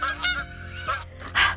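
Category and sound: bird, goose honking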